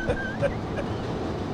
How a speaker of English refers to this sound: All right. We're opening up the window and letting people hear what the train actually sounds like with, come the, on, brown line. With the window open. This thing's gnarly.